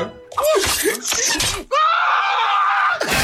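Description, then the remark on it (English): A man screams and hollers: a few rough, strained vocal bursts, then one long, loud, sustained yell that cuts off near the end. “Just screaming and hollering, going crazy and shit.”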